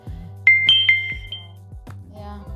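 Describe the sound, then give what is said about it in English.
A phone message notification chime rings out as messages arrive: three quick, bright electronic tones in a rising-falling pattern, clear, over a low steady background hum with no one speaking. “Yeah, I'm getting messages, so you'll get that, you know, notification sounds in the middle.”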